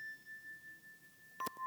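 A chime rings with a steady, pure sustained tone, then is struck sharply once near the end, starting a fresh, slightly lower ring. Clear, with no voices.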